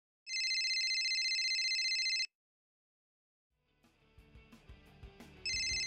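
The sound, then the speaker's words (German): A telephone in a shared flat in Mannheim rings loudly in a steady electronic burst for about two seconds, followed by a pause, then some soft clattering and rustling before the ringing starts again. “schön, dass du anrufst.”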